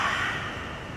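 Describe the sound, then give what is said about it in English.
During a breathing exercise, a person sitting tall breathes in through the nose, then gives a long, breathy exhale through an open mouth. A soft steady whoosh slowly fades, imitating the rush of an ocean wave. No one speaks. “Open up your mouth and exhale through the mouth, making the sound of a wave.”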